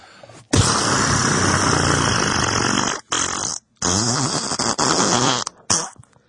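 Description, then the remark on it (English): A voice blows a long, loud, sputtering raspberry that mimics a fart, broken by a few brief pauses and ending in short bursts, with no talking. “It's just a fart sound. It's not an impression.”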